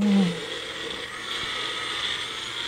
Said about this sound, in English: So he's screwing on the lid right now for the bullet. Okay. It's a little. The pickle juice in there. It's a mini blender.